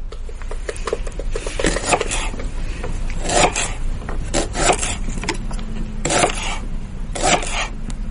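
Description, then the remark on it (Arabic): Onion being chopped on a cutting board: a steady run of sharp knife taps on wood, some quick and clustered, others spaced apart, with soft scraping in between and no voices. “اي صوت تقطيع على طاولة تقطيع، هذا الخاصة في المطبخ. تقطيع ايش؟ بصل.”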